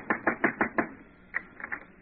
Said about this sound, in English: Costello, knock on the door. I'll talk to that tenant.